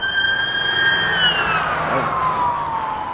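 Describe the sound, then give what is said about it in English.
An ambulance siren wails loudly and steadily, its pitch sliding downward as it sweeps past, over the low rumble of traffic, on Hilton Head Island. “That's an ambulance, not police.”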